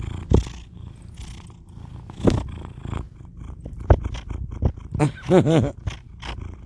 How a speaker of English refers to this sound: Can you hear him sniffing the phone? He's such a bitchin' cat.